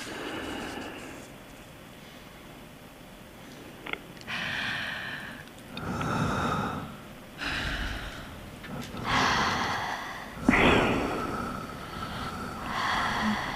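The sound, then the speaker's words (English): Heavy, rasping breaths, about six slow inhales and exhales in a steady rhythm, loud, with no talking. “Whose breathing is that?”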